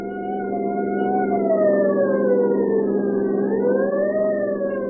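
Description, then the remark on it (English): A siren wails continuously, its pitch rising and falling slowly, over the dense, steady roar of a driving rainstorm, as a deputy sheriff's party speeds through the gathering night. It stays loud for the whole stretch, with no voices. “The scream of a siren knifed through the din of a driving rainstorm as Deputy Sheriff”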